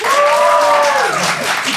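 A burst of loud audience applause, given as a vote on whether the 90s were the golden age of the internet, dense steady clapping with some cheering voices rising above it, sustained across the whole moment.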